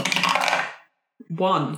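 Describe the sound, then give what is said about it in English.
White dice rattle and tumble across a hard tabletop in a short, busy clatter that quickly dies away, followed after a brief pause by a single spoken word. “So if you could now roll the white dice for me.”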